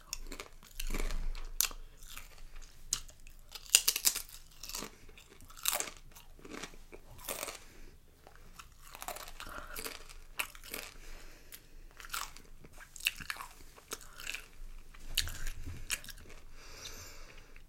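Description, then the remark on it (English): Crisp, crackly crunching of chips being chewed, with repeated sharp bites and bursts of brittle crackle spread unevenly over the whole stretch, no talking. “These chips are really good.”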